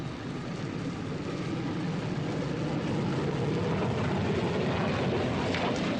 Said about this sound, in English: Bluebird was set to go. Coniston water, smooth as glass. The official timekeepers alerted, Donald Campbell sent the jet hydroplane full out along the measured kilometer.